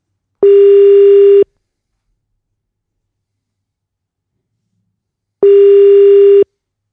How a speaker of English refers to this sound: Here he goes. Great, it's ringing. That's a good start.